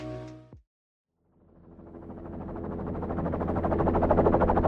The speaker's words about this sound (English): The snow around us is blown into a giant cloud as the helicopter I'm crammed into lifts off.